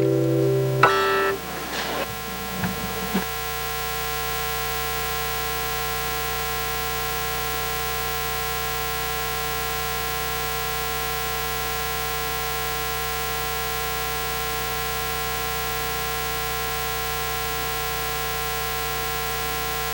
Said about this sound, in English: Just realized I was humming and the microphone was on. I do that all the time.